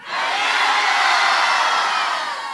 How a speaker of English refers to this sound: So on three, can you guys yell, scream bananas as loud as you can? Yeah? One, two, three.